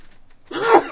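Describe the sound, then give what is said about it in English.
A single sneeze bursts out suddenly after a moment of near silence, loud, with a voiced, breathy explosion that trails off at the end. “Gesundheit.”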